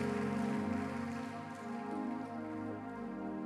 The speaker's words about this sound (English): Can somebody clap your hands and just thank the Lord one more time? Thank you, Jesus.